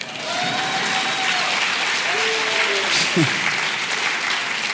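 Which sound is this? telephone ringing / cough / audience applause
audience applause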